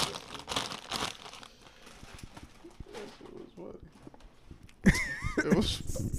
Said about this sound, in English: The loud part is opening the bag. After that, you good.